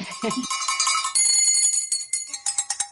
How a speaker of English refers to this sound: Around Nashville and around Tennessee, we all rang bells. And I rang one here in New York.